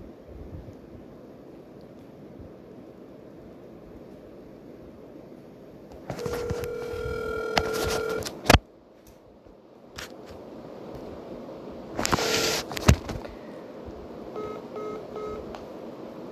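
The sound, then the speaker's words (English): Telephone dialing tones sound in two bursts of beeps over a steady, breezy background hiss as a phone call is placed to a guest, followed by a faint, repeating ringback tone near the end. No one speaks. “So we're going to get him on the phone here.”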